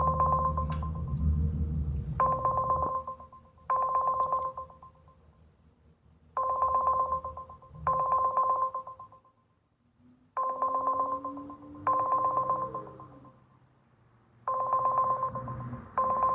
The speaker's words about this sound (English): Alright, so it's fucking ringing. You guys hear it ringing. Nobody's answering.